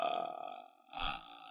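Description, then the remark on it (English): A voice imitates the ghostly, croaking death rattle from the film The Grudge: a raspy, guttural drone that dips briefly, then swells again with a deep rumble, lasting about a second and a half. “And people would consistently like make the...”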